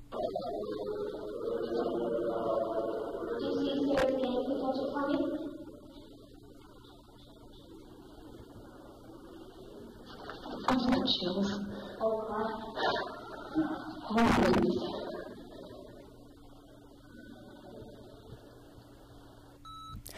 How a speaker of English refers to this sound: See, and that whistle, it's like a single note.